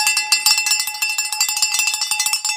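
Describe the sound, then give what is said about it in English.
A soundboard cowbell effect clanks in a rapid, steady run of bright metallic hits, loud and unaccompanied, with ringing high overtones across the whole clip. “I brought back the soundboard. So we've got cowbells.”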